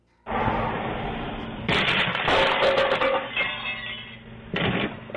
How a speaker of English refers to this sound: A woman was outside and a car ran up onto her front lawn and crashed into a pole on her yard. Listen to how nice she is about the car crash.